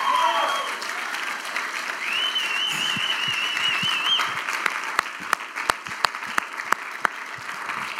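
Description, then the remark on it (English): A standing crowd applauds the veterans of the United States steadily for about eight seconds, the clapping dense and sustained, with a few sharper individual claps standing out near the end; faint whistles and murmurs rise within it. “Why don't we stand and give a round of applause to all the veterans of the United States.”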